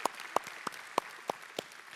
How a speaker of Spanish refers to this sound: Él es originalmente de Venezuela, pero creo que sí, merece un aplauso Venezuela sin duda alguna.